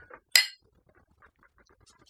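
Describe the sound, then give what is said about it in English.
A single bright clink of shot glasses touching in a toast, sharp, followed by faint scattered background noise. “So are we gonna shoot it then? Yeah. I think we have to shoot it. Cheers. Cheers, folks.”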